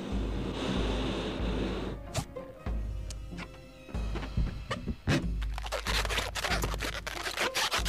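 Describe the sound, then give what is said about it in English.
Rubbery squeaking and scratchy rubbing as a balloon is twisted into a balloon animal, with irregular sharp squeaks and soft thumps building in intensity toward the end, with no voices. “You want another balloon animal?”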